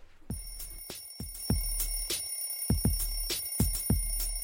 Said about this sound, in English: Alarm bell ringing, I hit the snooze. Wake up late, not a minute to lose.